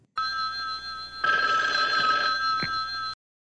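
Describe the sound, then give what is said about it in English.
A telephone from The Rockford Files rings in one long, unbroken burst of about three seconds, a bright, steady electronic trill that thickens and turns harsher halfway through before stopping abruptly into silence, just before the answering machine message. “This is Jim Rockford. At the tone, leave your name and message.”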